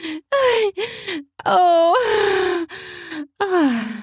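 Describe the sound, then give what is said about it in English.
A woman gasps and pants heavily as she stands very shakily, almost falling down, in a rapid series of breathy, voiced exhalations, some drawn out into moaning sighs, fairly loud with brief pauses between breaths. “She stands, though very shakily, almost falling down, all while gasping and heaving.”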